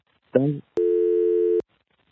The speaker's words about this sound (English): Boy, that lady's voice and the beep is very, very abrupt.